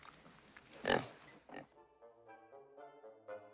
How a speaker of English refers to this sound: But when I got Misery here, everything changed. She just makes me smile so. She's a fine pig is what she is.